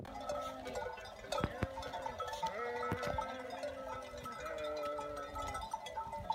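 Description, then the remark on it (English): A shepherd's flock of sheep in Spain bleating continuously, filmed on a phone, several overlapping voices at once, with a few sharp clanking knocks like cowbells or hooves sounding through the steady outdoor din. “I don't know anything about sheep apart from the fact that 4 years ago when I walked across Spain on a sabbatical, I came across a shepherd, and I just want you to watch this little video that I took with my camera, my phone.”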